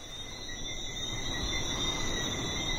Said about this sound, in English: And when it gets dark out, it's so tranquil. There's just the sound of the breeze and these little frogs that come out at night and chorus all over the island. They're so loud that I can hear them through the phone when I'm talking with my parents.